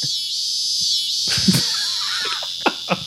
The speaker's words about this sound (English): You hear that? Hi, it's nature. God. Two crickets right now are going at it as we speak. Wow. Listen.